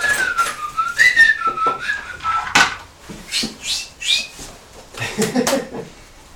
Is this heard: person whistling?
yes